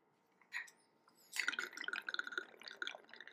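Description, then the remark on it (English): Jameson whiskey is poured into a cup, a steady gurgling stream with quick rhythmic glugs, after a brief soft clink at the start. No one speaks. “I just pour until I think it's”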